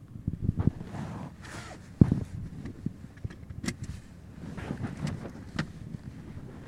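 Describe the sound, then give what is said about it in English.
A car pulls away and drives, its low engine and road rumble steady throughout, with some wind buffeting and a few sharp bumps and clicks. No one speaks. “All right, I'm going to start driving.”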